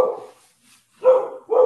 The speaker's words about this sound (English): And my parents' dog is going bananas. That's always fun.